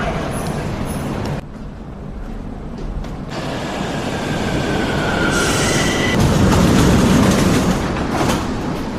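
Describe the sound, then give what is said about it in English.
A metro train rumbles loudly and steadily through Tudor Vladimirescu metro station in Romania, with metallic wheel squeals and high tonal whines rising over the constant roar, continuous with no voices. “So, the metro station here is called Tudor Vladimirescu.”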